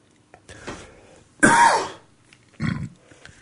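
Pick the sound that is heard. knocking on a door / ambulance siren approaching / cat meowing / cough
cough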